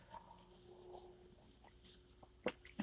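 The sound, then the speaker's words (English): Quiet sips of hot coffee, the first sips of the day from a morning cup: a couple of short slurping sounds near the end after mostly hushed room tone, with no one talking. “Those were literally my first sips of the day, so I love that zing into the system.”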